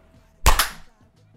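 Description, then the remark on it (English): A single sharp hand clap, slightly doubled like a flam, bursts out of near silence and rings off briefly before fading back to quiet. “You ready for the clap?”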